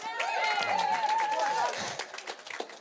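An audience claps in a dense, steady burst, with a wavering high whoop riding over the first half, then the applause thins out and trails off.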